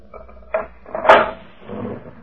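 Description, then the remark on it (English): A jail cell door is unlatched and pulled open by a sergeant for a priest: a short metallic clack, then a louder clanking bang as it swings, followed by a low scraping rumble. No one speaks. “Hey, you may open the cell door for me, Sergeant.”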